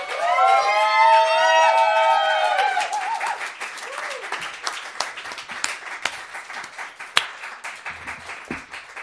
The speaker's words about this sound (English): And one more time, a round of applause